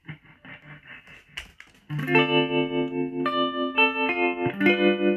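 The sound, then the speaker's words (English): An electric guitar played through the tremolo effect of a Zoom multi-effects pedal, its volume pulsing in a steady, rapid rhythm, first on short notes and then on ringing sustained chords that waver evenly. No voices. “Okay, so we got a tremolo here.”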